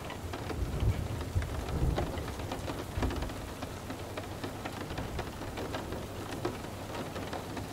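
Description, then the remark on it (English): Steady rain falls continuously, a dense hiss with crisp drops pattering on a surface, while a low rumble murmurs underneath; no voices are present. “Feel the wonder and healing of what the rain brings, even allowing your mind to feel that freedom.”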